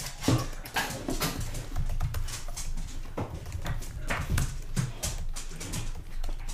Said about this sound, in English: What are you typing? So we can fill the dead air.